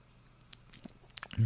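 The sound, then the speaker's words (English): Quiet wet slurps and lip clicks as someone takes a few small sips of Pilsner beer from a freshly opened can, ending in a louder, low gulp-like thud. “Give it a little sip before I pour it out.”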